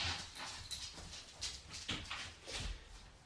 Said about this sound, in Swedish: Medan du känner in den där så hör jag ett klickande ljud. Och det är min hunds tassar. Så jag ska släppa ut honom till resten av huset.